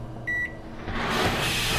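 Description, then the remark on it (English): A short, bright electronic beep from a handheld comp unit overriding door controls, then a swelling mechanical whoosh as a sliding door opens and keeps hissing steadily to the end, with no voices. “No, I am packing a handheld comp unit. Overriding door controls.”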